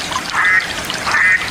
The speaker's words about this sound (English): No, he got it right. It's a mallard duck. Mallard.